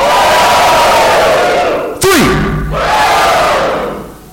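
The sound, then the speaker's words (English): A large crowd yells and cheers loudly and continuously as prize-draw ticket numbers are called out, with a sudden thump and a falling whoop about halfway through before the roar swells again and fades slightly at the end. “So I want everyone to make some noise per number we get yelled out that you have, and then we're gonna whittle it down to the last person screaming because they have the last number.”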